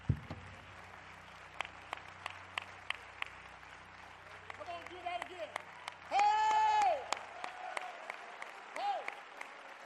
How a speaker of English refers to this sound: You may be seated. When you're there, put your Bibles on your lap and clap your hands unto the Lord, all the people of God.